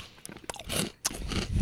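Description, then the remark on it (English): Crunching and chewing on chocolate candy, with a quick series of dry, crackly bites and grinding that swell and fade, a brief pause, then more crunching. No one speaks. “This is a mystery wrapped in chocolate. There's no shattering to this. It's the way it disappears that matters. That is very crunchy.”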